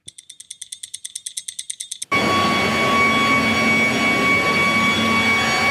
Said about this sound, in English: I knew that the battle of the leaf blowers had started. There's a man who lives three doors away who blows the leaves from his lawn onto his neighbour's lawn.